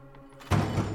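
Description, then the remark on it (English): A wooden door barred from the outside is given a few quick pulls as silently as possible, giving a sudden dull thunk followed by a rough, sustained rattling clatter after a moment of low, quiet hum. No one speaks. “Give it a few quick pulls as silently as possible.”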